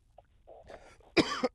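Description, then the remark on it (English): A person coughs: a few soft throat sounds and breaths lead into a loud, harsh burst of coughing near the end, with no talking. “I still got the fucking coughs.”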